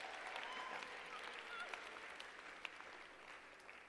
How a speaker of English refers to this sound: Yeah. Very kind. That was pity applause, but I will take it.